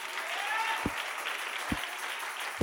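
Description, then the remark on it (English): An audience claps in a dense, steady wash of sound, with a deep thump landing roughly once a second underneath, like a beat keeping time. “Well, you ought to be clapping, because if you can't, he won't.”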